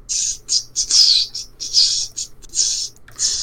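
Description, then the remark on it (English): Snake Jazz: a steady, looping run of six or seven sharp hissing bursts, bright and cymbal-like, pulsing in an even rhythm with brief gaps between them and no talking. “It's that repeated forever. That's Snake Jazz.”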